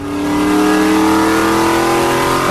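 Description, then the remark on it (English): A car engine revs loudly and steadily, its droning pitch climbing slightly as it holds high throttle for a couple of seconds, with no voices; the driver cannot get it into second gear. “Can't get it into second gear. Driving the car.”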